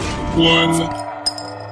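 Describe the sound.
A sustained voiced tone fills the opening, then a single sharp clink of beer glasses in a toast rings out with a brief, high, bright tone that quickly fades.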